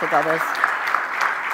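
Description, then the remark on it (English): An audience claps steadily to receive their pastor, a dense, even wash of applause throughout, with a short voiced call or cheer rising above it at the very start. “Even my daughter-in-law clapped.”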